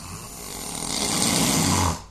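A man snores in his sleep, one long rasping, rattling breath that swells steadily louder over two seconds before cutting off. It is close and clear, with no talking.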